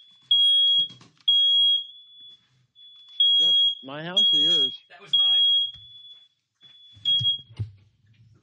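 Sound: smoke detector alarm beeping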